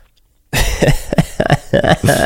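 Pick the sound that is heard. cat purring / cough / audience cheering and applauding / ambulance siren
cough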